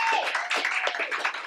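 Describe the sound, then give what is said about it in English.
A short burst of crowd applause for a tour manager, many hands clapping together in a dense, steady patter at moderate volume, with no voices standing out. “We'll give her a round of applause.”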